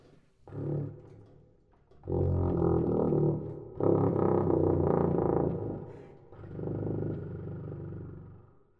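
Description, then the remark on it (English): A tuba plays its lowest note in deep, growling low notes in several sustained blasts, with a brief note first and then long buzzing tones with rich low overtones, loud and rumbling, almost like an engine. “on the tuba, give us just go da-da-da-da-da, give us the lowest the tuba goes.”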